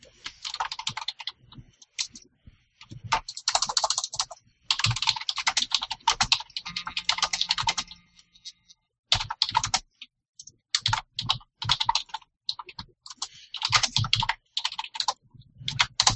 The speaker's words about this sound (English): Typing.